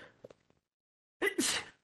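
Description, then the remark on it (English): A single loud sneeze: a sharp breath in followed at once by a noisy, explosive burst, clear after a moment of quiet. “Bless you.”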